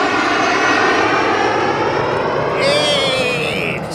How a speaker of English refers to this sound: Daddy, is that a jet made of burps and belches?